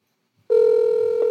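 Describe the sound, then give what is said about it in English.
A telephone ringback tone on an outgoing call to a mother: a single steady electronic tone that starts abruptly after a brief silence and holds evenly, fairly loud, with no voices. “Phone is ringing.”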